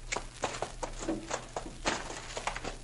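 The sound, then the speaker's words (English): Two horses, Maud and Bess, walking as they are fetched to be saddled, their hooves clopping in an uneven, overlapping rhythm of sharp knocks over a low steady hum. “Too much eating and no work ruins your horse sense.”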